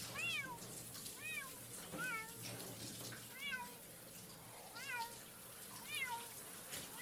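A cat meows repeatedly in distressed, drawn-out cries, about six in all, while being given a shower, over the steady hiss of running shower water, with a faint low hum beneath.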